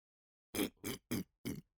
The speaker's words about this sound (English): Why is he drinking it like that? Sounded like a pig eating dinner.